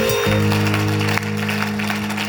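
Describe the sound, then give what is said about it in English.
An audience claps steadily in a dense, continuous wash of applause, with sustained keyboard or organ chords holding underneath throughout. “Those who are clapping, God has come through right now.”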